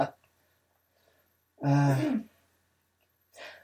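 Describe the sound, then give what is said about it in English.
A single drawn-out yawn, voiced and fairly loud, with a pitch that slides downward before trailing off, followed by a short breathy exhale after a pause. “Oh, I'm yawning.”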